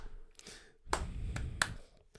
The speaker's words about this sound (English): Oh, you want to clap? I thought you were going to start a song. I'm going to clap for you. I mean, I thought you were going to keep clapping because I was going to, like, jump into it.